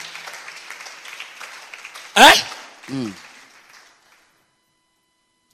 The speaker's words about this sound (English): A Christian is clapping.